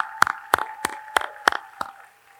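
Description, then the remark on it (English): Applause for a woman asked to stand up, heard as about six sharp, evenly spaced claps in a steady rhythm, moderately loud, over a constant mid-pitched hum, fading out at the end. “Let's give Denise a big round of applause.”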